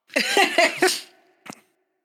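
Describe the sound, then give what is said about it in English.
A quick run of about four harsh, raspy coughs, fairly loud, then a brief pause and one shorter, softer cough at the end. No talking. “Hold on, I was coughing.”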